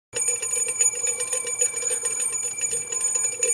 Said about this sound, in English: The Sterling bell has rung.